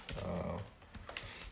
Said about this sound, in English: And I apologize, guys, for typing in your ear.